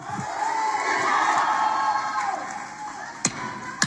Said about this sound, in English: All right. That's out of order. That's the second time. One more time. And unfortunately, I will not be able to determine who is yelling during the proceedings. So I would have to clear the whole thing out.